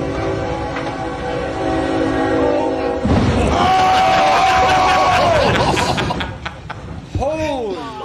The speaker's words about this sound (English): Well, I don't think he realized the train was coming yet. Yeah, but like, just go, like, go. Yeah, why was he going so slow?